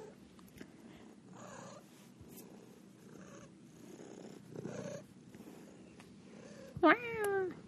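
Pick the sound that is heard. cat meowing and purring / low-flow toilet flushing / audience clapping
cat meowing and purring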